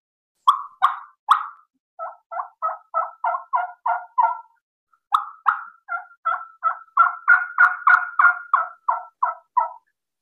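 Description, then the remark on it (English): Two runs of soft, rolling turkey hen yelps on a call, each starting with a few louder notes and settling into a smooth, even string of short, mellow yelps with no talking. “Soft, bubbly, molasses on a river rock, just a smooth little roll over yelps.”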